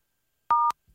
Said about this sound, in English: If you're speaking from a touch-tone phone, please press 1 to proceed.